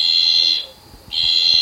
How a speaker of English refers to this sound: The two new species were described in November 2021 as the screaming tree frog and the slender bleating tree frog. This is what the slender bleating tree frog sounds like.